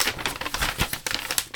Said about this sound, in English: I love this black cat one. I'd like to crinkle it just so you can get the sort of the tactile experience.